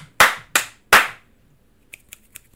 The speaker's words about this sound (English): This is me, you see that? This is me just raining snaps. Four claps and a bunch of snaps. They're just like crunching a bunch of snaps over it like a crushed up Reese's PC on a Sunday.